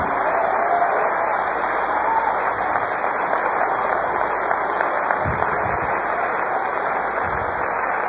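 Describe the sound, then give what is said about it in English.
An audience at a church service claps their hands to praise the Lord in sustained, dense applause. The crowd sound stays steady and loud throughout, with no one speaking over it. “Would you just clap your hands and love the Lord one more time?”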